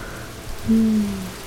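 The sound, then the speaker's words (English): Steady rain falls in a continuous, even hiss throughout, moderately loud, with a brief low humming tone rising over it midway before fading back into the rainfall. “My memory of rain. Perfect rain.”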